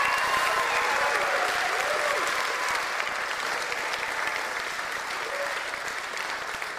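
Sustained applause from a sizable audience for the band at a morning gathering at St. Matthew's church, a dense steady patter of many hands clapping for several seconds, fairly loud and slowly tapering off, with faint voices and cheers mixed in.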